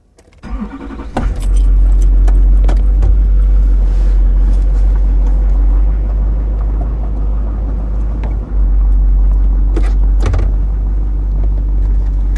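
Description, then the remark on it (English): A car engine cranks and catches, then settles into a steady, loud idle, with a few faint clicks and rattles as the driver begins backing the car out. “I'll get out of your way. I'm going to back out.”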